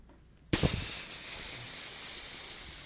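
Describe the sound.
After a brief silence, a voice lets out a long, steady hiss, imitating air let out of a balloon. It starts abruptly, stays loud for over two seconds, then eases slightly.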